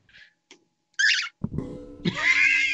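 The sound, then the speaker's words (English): A pet bird named Dusty, with a mohawk-like crest, squawks and chatters in harsh, raspy bursts: a few short chirps, then louder screechy calls and a sustained gravelly cry that sounds like the cuss word "fuck". “Why are you peeking, Dusty the bird? Not bad, Dusty. Look at his mohawk. He's like, fuck.”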